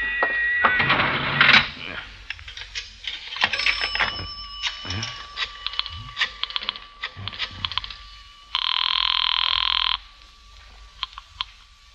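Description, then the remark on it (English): A phone line rings once as a call is placed from a public telephone, a steady buzzing tone lasting about two seconds, after a stretch of clicks and handling noises. “There is a public telephone over there”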